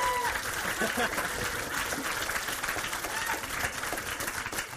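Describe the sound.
An audience cheers and applauds, a dense, steady wash of clapping and shouts that holds loud and even for about five seconds, with voices mixed into the crowd noise.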